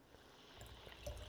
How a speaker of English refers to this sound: Okay, that was a little heavy pour there.